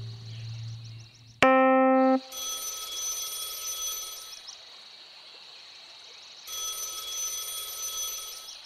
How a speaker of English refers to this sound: Phone's ringing. Can't figure out where the hell it's ringing, though. Kind of just echoes through the air, then stops. Then restarts a few minutes later somewhere else.